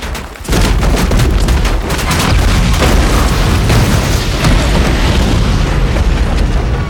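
A bird strike on a jet engine: a sudden loud bang bursts into a continuous roar, with a rapid series of heavy thuds and pops over the first seconds before the roar carries on.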